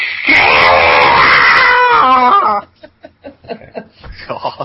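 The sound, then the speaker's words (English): A person imitates an eagle's cry with a loud, shrill, wavering screech lasting about two seconds, followed by quieter, choppy bursts of laughter. “I got to do my impression of the eagle.”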